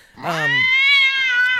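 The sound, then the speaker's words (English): A single drawn-out cat meow sound effect, loud, rising in pitch at the start and then holding steady for over a second. No one is talking. “One, you know, the donkey bray doesn't mean anything more than the cat meow or hiss.”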